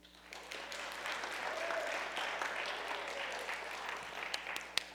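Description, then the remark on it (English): A crowd claps and cheers steadily for about five seconds, a dense wash of applause with scattered sharper claps near the end and no clear speech. “Okay, so you've got to, I'll say it again, if you don't cheer, this is going to be lame, so help me out here, okay?”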